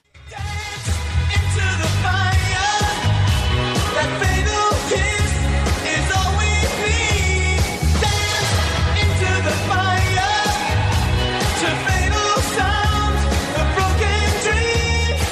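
A 1980s James Bond theme song plays at full volume, with punchy drums, a throbbing bassline and bright layered synths driving a steady beat from start to finish.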